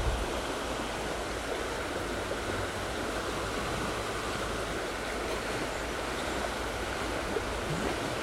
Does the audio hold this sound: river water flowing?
yes